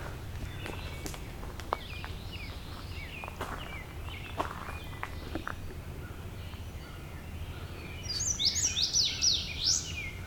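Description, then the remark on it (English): An indigo bunting at the top of a very tall dead tree sings a bright, high burst of paired, sweet notes near the end, after scattered faint chirps and irregular drips and taps of water drops being blown off the trees. “A little closer up on an indigo bunting.”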